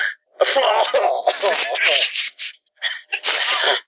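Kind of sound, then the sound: vocal imitation, imitated choking cough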